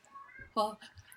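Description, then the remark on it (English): A single sudden, loud sneeze bursts out and fades quickly, with quiet murmuring before and a faint breathy trail after. “Sorry, had that sneeze coming.”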